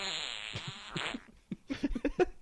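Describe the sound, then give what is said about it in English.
A buzzing fart sound effect: a long, raspy, wavering blast that breaks into a rapid series of short sputtering bursts, loud, with no one talking. “At least the farts are natural. This one's called Fart of the Bumblebee.”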